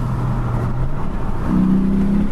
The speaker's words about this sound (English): You might just get a taste for the engine here. I'll open the window a bit.